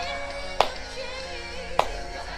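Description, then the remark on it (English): Two sharp, crisp hand claps of praise land about a second apart, standing out clearly over a steady, soft tonal background with no talking. “Just give him a hand clap of praise.”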